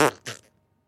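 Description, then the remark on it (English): A person imitates a fart with the mouth: two quick, sputtering raspberry bursts, the first louder and longer, the second trailing off into a brief flutter, alone with no talk. “Should we make fart noises?”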